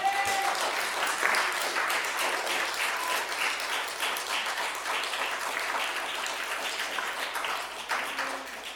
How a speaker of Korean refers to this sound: 그리고 한번 박수 좀 쳐봐요.